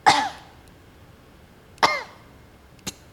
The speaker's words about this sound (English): I'm not yawning. I had a cough. That's the air quality.